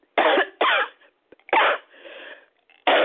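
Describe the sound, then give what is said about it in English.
A series of harsh coughs from a woman being prayed over for healing, two quick bursts followed by another heavy cough with a wheezy trailing breath, then a fourth starting at the end. “Oh God, even as that cough right now released, oh God, let it be released from her, oh God, and never to return and never to affect anybody else, oh God.”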